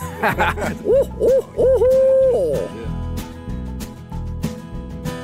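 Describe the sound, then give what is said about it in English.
A rapid run of loud, wavering owl hoots, four or five in quick succession, rising and falling in pitch before trailing off over a steady thumping rhythmic background. “Do you ever owl hoot when you're excited about something as a celebratory?”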